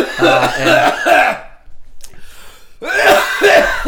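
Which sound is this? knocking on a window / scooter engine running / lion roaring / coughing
coughing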